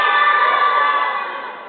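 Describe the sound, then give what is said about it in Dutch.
An audience of children shouts a name in one drawn-out word in unison, loud, the chorus holding steady before fading slightly at the end. “Even anders even roepen allemaal.”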